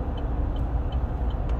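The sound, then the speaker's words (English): Steady road traffic rumble with a heavy vehicle idling, a few faint high chirps repeating every moment, and a brief hiss of a bus air brake near the end. “Sorry. Traffic is... it's fun to say the least someday.”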